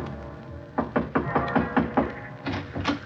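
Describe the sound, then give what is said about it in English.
Someone knocks on the wooden door of a beach house, a quick run of about seven firm raps followed by a short pause and two more knocks, moderately loud with no voices. “I knocked on the door for a good minute before it finally opened.”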